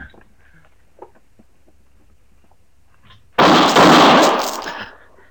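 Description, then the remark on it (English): After a few seconds of near silence, a sudden loud gunshot bursts out, quickly followed by a second blast, with a harsh crackling roar that fades out over about a second. “How did you know he was going to shoot, Matt?”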